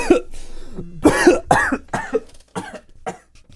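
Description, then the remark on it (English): A fit of harsh, spluttering coughs after choking on water, about six or seven bursts in quick succession that taper off into smaller throaty hacks, with no speech. “No, I did choke on water.”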